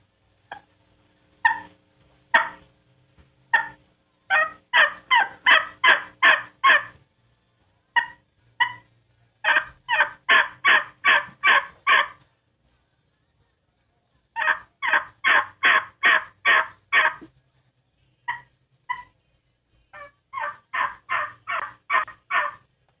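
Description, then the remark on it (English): Soft, isolated turkey clucks alternate with bursts of rapid, raspy mating yelps made on the E250, runs of 3 to 5 evenly spaced yelps separated by short pauses, clear with no talking. “And I'm going to do a mating yelp. It consists of 3 to 5 yelps. I'll do some soft clucks.”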